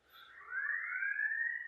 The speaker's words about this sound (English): Every morning in the 8 o'clock hour, they test every siren in the building over there.